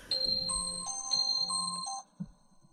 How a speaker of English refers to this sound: She wanted to have wedding bells. That's what that was. I was adding in.